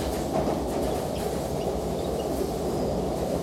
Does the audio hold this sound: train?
yes